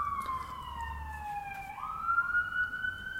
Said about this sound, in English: Yeah, it's just the siren. Thank you. Mm-hmm. Yeah, if only... Yeah, I'm just letting it go by.